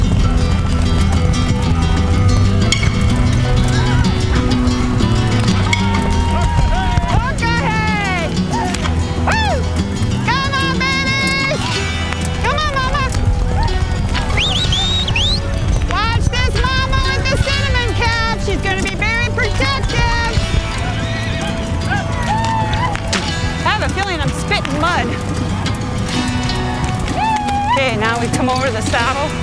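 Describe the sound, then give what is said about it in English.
A buffalo herd being driven toward a trap runs through fog down a valley with thundering hooves, a loud, steady low rumble that never lets up, while swooping, wavering higher tones rise and fall above it throughout. “They run together, rolling, thundering down the valley.”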